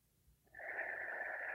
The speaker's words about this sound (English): Nice deep inhale. And bring your other hand to your lower belly, right below your navel. Next inhale, focus on breathing in the back of your body.